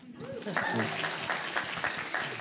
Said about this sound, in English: Congratulations on the marriage, by the way, and congratulations on getting that step together. Yeah, it's okay to clap.